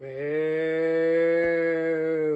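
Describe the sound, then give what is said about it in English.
A person lets out one long, steady mooing sound in imitation of a cow, directed at a baby to see whether it cries. A low sustained drone held for about two seconds, with no other talk. “Apparently, if you moo at a baby, it'll make them cry.”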